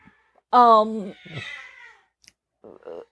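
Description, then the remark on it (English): Two pet cat brothers screech in a fight: one loud, harsh, wavering yowl of about half a second that trails off into lower, ragged cries, then brief fainter sounds after a pause. “there's loud cat screaming.”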